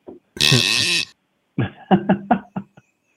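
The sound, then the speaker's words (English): A buck grunt call, apparently imitated by a voice: one long, raspy, squealing grunt, then a quick series of five or six short, guttural grunts in an uneven rhythm. No talking. “It sounds like a buck grunt.”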